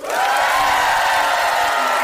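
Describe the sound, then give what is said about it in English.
A packed, sold-out live audience at the Bell House in Brooklyn, New York, applauds and cheers at a live taping of The Sporkful, in a steady, dense roar of clapping and voices that holds at full volume for the whole two seconds. “We sold out the Bell House. It was a packed crowd.”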